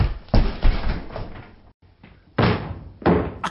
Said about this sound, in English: That's it. Stand back. I'm breaking down the door. No, that's a terrible idea. Don't. I've seen how they do it in the movies. I'm going to do it.